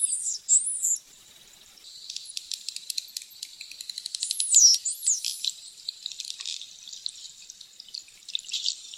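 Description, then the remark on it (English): Bottlenose dolphin signature whistles, recorded in the Bahamas by Wild Quest: high sweeping tones that rise and fall in looping contours, sounding several times over bursts of rapid clicking, with no voices present. “These bottlenose dolphins were recorded in the Bahamas by Wild Quest.”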